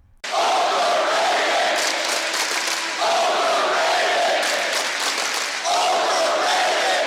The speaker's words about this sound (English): Right, you hear that? The crowd's booing.